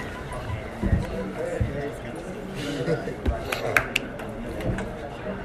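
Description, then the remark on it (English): A chair scrapes and knocks across a hard floor in a few short, uneven bursts as someone moves it right next to the speaker, with a murmur of people talking behind it. “take your chair, put it right next to me.”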